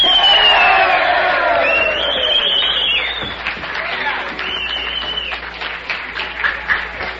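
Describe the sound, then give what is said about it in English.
A crowd cheers loudly for the gang from the Red Garter, with whoops, shouts and scattered clapping blending into a dense, sustained roar that eases slightly after a few seconds but keeps going throughout. “Give them a big cheer.”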